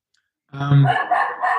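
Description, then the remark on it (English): A dog lets out a loud, drawn-out bark that turns into a wavering, howl-like yowl, lasting about a second after a moment of silence, with no talking alongside it. “Sorry, I've got background dogs who are obviously...”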